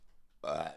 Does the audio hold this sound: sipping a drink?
no